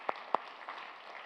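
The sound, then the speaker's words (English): A few sparse, polite golf claps from an audience giving the Lord Jesus a hand, two sharper ones standing out over a faint, scattered patter of light clapping that quickly thins out. “That was a nice golf clap you just gave the Lord Jesus.”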